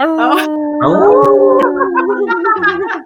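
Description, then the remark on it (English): Several people give a Diamond Dog yell, howling together like dogs, loud, their overlapping voices rising and wavering in a sustained group yell for about three seconds, with a few yips near the end. “Can we get a Diamond Dog yell?”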